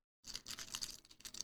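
Video game cases, including Pokemon Diamond and Pearl and a Mario game, are shuffled by hand to pick a starter Pokemon at random. A quick run of plastic clicks and rattles starts after a brief silence and continues steadily with no talking.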